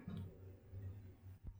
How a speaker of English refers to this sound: I'm going to sneeze. I'm sorry. COVID.